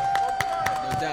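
A brief round of applause: a handful of sharp, scattered claps at uneven intervals, moderately loud, with a steady high hum running underneath and no clear talking.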